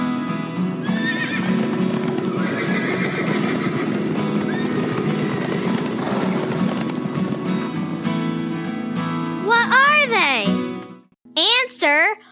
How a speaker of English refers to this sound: Horses! The horse belongs to the species Equus caballus. It is a hardy, four-legged mammal. Each leg has one toe that is protected by a hard covering called a hoof, which is a lot like a really thick toenail.